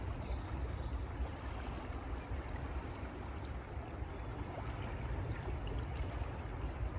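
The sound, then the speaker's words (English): A steady, full rush of flowing water where rivers merge, dense and constant with a deep low rumble, for the whole stretch with no voices. “So there is a merging happening at the scale of these rivers.”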